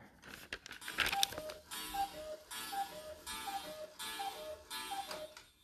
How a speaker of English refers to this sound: Is it already? Are you kidding me? It's already 6 o'clock. I got a cuckoo clock and it's already 6 o'clock.